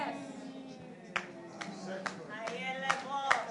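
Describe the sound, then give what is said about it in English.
Scattered claps from an audience, a handful of sharp hits spaced evenly under a speaking voice that continues over them. “Don't just clap.”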